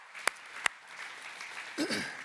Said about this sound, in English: Listen, yeah, well, we can clap for that and praise God for that.